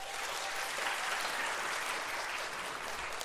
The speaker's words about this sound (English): And let's give them one big round of applause as they head back to their seats.